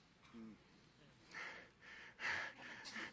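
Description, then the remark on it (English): A voice imitates heavy, hard breathing to illustrate the literal meaning of the word "wrath": a few forceful, noisy huffs and gasps in quick succession, moderately loud, with no words spoken. “It literally means breathing hard.”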